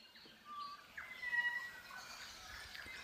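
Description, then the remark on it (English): A chorus of land birds, such as tui, kaka, robins and saddlebacks, sings by day in the forest on Hauturu Little Barrier Island: clear whistled notes and quick chirps overlap from several birds, steady and continuous with no voices. “By day, the forest on Hauturu Little Barrier Island belongs to the land birds.”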